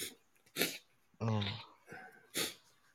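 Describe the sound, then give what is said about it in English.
A sharp sneeze from someone who got the sniffles sitting under an air conditioner, followed by a brief voiced sound and another quick breathy burst, then a final sharp sneeze-like blast near the end. “No, I was sitting under the air conditioner and I got the sniffles because it's cool.”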